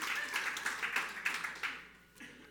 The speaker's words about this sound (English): Give my wife a round of applause, man. She's such a beautiful woman. She puts up with me.